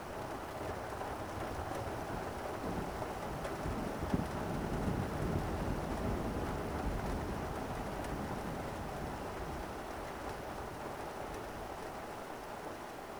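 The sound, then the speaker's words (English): Steady, dense heavy rain from a thunderstorm pours down continuously, with a low rumbling undertone of thunder. The downpour stays loud and even throughout, with no voices. “The power of the storm blurs everything outside and makes you retreat from the covered deck into your room.”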